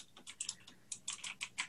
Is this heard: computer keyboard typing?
yes